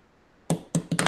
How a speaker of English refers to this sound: I dropped my pencil. My bad.